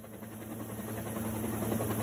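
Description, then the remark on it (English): A county fire department rescue helicopter's rotor and engine drone steadily with a low, throbbing hum and broad whooshing noise, continuous and swelling slightly over two seconds, with no voices, as it airlifts a 79-year-old man from his flooded house north of Santa Barbara, California, under clear, sunny skies. “In a video posted by the county fire department, a helicopter airlifted a 79-year-old man from his house after a broken levee swamped his and more than a dozen other homes.”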